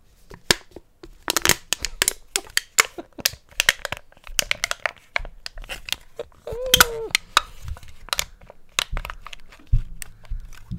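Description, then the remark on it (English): Crisp metallic crinkling and crunching as a tin can is handled and crushed, with dense irregular snaps and pops running continuously, and a brief low hum near the end. “we're going to start with my favorite type of asthma. It's called the tin can.”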